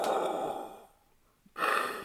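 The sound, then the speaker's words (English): A voice mimics heavy mechanical respirator breathing: a long, hissing, noisy exhale, a brief pause, then another loud rasping breath, alone without talking. “the breathing”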